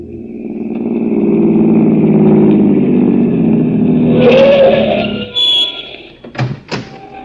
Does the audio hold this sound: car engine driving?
yes